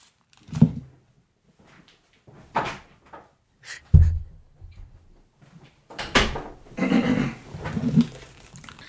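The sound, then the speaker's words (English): A door is opened and shut, with a series of wooden clunks and one heavy thud, followed by some rattling and shuffling as it swings closed. No one speaks. “Wait, I'm trying to see if they're outside the door.”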